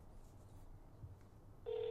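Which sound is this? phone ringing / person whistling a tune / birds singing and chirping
phone ringing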